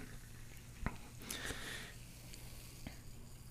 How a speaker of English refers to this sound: Can hear the bubbles talking. They're very beautiful.